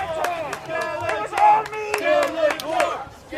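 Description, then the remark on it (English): A large crowd cheers and shouts over scattered, continuous clapping, a dense and lively roar of many voices that swells and dips without pause. “Listen to the crowd. Sounds like they like Skeletor.”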